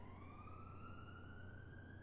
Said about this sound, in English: And as you've probably seen on the news, our city has been flooded with the sound of emergency sirens and the cries of protest.